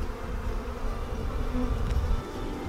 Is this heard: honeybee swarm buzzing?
yes